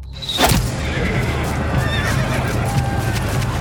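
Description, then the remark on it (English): A horse whinnies in high, wavering cries over a dense, rumbling bed of hoofbeats and movement that continues steadily throughout. “His pace slowed when he heard hooves again.”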